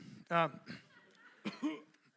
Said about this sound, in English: Getting used to this thing. I might try out a few coughs up here.